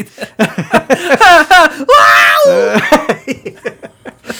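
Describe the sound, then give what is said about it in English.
A loud, drawn-out scream, a voice imitating the Wilhelm scream stock movie sound, for a fighter going down in an imagined Han Solo versus Axel Foley fight, rises sharply then falls away, framed by short bursts of excited talking before and after. “And he lets out a Willem scream as he goes down.”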